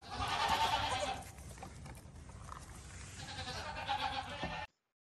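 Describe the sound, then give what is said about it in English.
Goats bleat in two loud, wavering calls, one at the start and another near the end, with a quieter stretch of farmyard background in between. “Do you own goats?”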